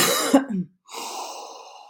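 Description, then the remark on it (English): A sharp, throaty burst is followed by a brief pause, then a long, steady breath drawn in through the nose, moderately loud, with no talking, as a person breathes in Breathe essential oil by doTERRA from the palm of their hand. “And I'm breathing in deep”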